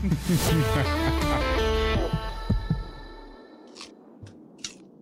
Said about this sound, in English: The apple crunch. Back to the apple.